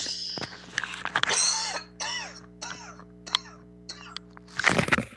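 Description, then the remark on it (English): A speaker gives several harsh coughs and throat-clearing sounds in bursts, with brief pauses between them and a final strong cough at the end; no talking. “Excuse me, I have to cough.”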